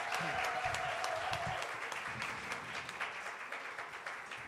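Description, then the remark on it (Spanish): A crowd applauds the parents steadily for several seconds, a dense, sustained wash of many hands clapping at once, loud, with faint voices mixed in underneath. “A ver, un aplauso una vez más a cada uno de ellos.”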